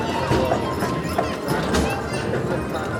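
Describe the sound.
Horse hooves clip-clop in an irregular, steady stream of knocks, mixed with busy background noise and indistinct voices murmuring.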